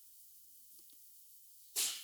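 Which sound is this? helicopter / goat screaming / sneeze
sneeze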